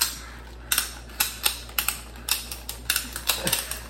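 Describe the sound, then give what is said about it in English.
A heavy, articulated toy action figure's joints creak and click as it is posed, a quick, irregular series of about a dozen sharp, dry clicks with no voices over them. “Boy, he's creaky. He's not sneaking up on anybody.”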